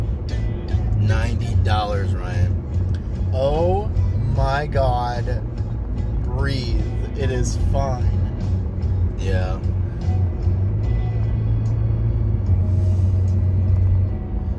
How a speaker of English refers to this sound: that car was like forever away. I know, I meant to slow down just in case, and then I accidentally stepped on my brake a little too hard.